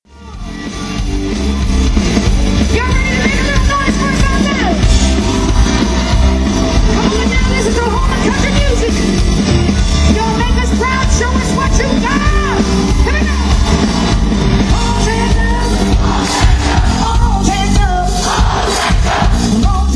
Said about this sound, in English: Listen to the crowd sing along with her.